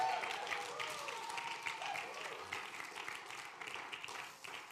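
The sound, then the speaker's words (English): A church audience claps hands in praise to God during a sermon, a dense, sustained wash of many hands applauding together at steady volume for several seconds, tapering slightly at the end, with faint murmuring voices mixed in. “Yeah, go ahead and give God a hand clap of praise.”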